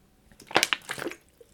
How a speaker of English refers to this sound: My voice is cracking. What is going on? Let me drink some water, sorry.